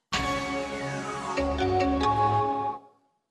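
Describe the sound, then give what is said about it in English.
The Intel audio logo, a short, bright electronic chime jingle, plays alone, a few bell-like synthesized notes ringing out over a warm sustained tone, then fading out after about three seconds. “Intel. Now, that's bringing back memories in your life.”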